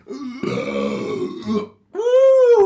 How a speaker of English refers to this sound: That was a very manly burp there